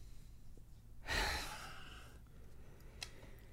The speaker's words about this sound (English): Janine, when she reaches the alleyway, lets out a gasp.